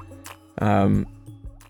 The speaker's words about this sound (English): That's actually the same guitar sound used to make the drip. Right. It's from that same guitar recording.